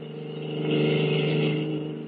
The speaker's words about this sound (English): At the moment, they are speeding away from the naval base in a stolen car.